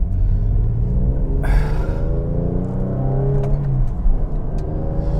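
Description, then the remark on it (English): A car engine roars as the car accelerates hard onto a freeway, shifting from 4th into 6th gear at 70 to 80 miles an hour, its pitch climbing steadily over a heavy low rumble, with brief clicks and whooshes of passing air in the background. “On the freeway. 4th gear, 70 mile an hour dinger. 4th into 6th gear, 80 miles an hour.”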